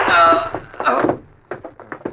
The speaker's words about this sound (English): There you got him. Someone may have heard that shot.